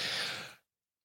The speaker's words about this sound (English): Oh, I wonder if when I yawn, if like 20 listeners yawn.